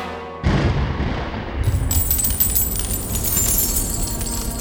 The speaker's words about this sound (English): There was a crack of thunder. To Ali's astonishment, gold coins began to rain down from the ceiling. The gold poured forth until it lay 3 feet deep on the floor.